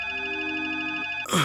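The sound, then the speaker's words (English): A telephone rings in the early morning hours of August 30, 1972, with a call about the List mansion: a steady, sustained electronic tone for about a second, then it abruptly stops as a louder burst of clattering takes over, like a receiver being lifted. “got another phone call about the List mansion.”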